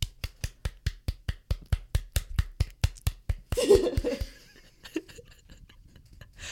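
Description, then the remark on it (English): A mallet pounds chicken breast flat for schnitzel in a quick, steady series of about seventeen sharp, even thuds, followed by a burst of rougher, noisier handling and one more dull knock. “That's a tasty sound right there. Tom Zalatni is hammering out the chicken.”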